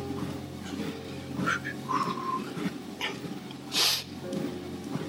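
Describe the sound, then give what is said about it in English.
A few short, breathy nasal sniffs at irregular intervals, the last one sharper and louder, over a steady low background hum with no talking. “There I am sniffing again.”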